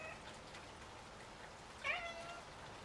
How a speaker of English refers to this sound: It was the soft, pathetic mew of a cat.